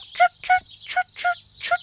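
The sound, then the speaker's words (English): Birds chirp outside in a quick, steady series of about six bright, harsh calls over two seconds, clear, with no voices. “We should chirp back.”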